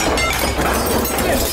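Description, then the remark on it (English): Ceramic ware, such as a piggy bank, being smashed in an escape room to find keys hidden inside, in a loud, continuous burst of crashing and clattering shards that stays dense and harsh for about a second and a half, with no voices. “Gentlemen, I have a feeling that the ceramic ware in here has something to do with that.”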